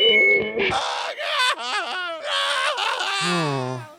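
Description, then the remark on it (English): A man screams inside a space helmet in long, wavering wails, his muffled voice rising and falling continuously for several seconds, ending in a lower, strained moan. “If the audience can't hear his screams, they won't connect. Don't stop screaming”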